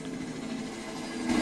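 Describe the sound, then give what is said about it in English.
A police helicopter's steady, low mechanical drone hums continuously, swelling slightly louder in the final moments, with no voices over it. “There's a police chopper coming around.”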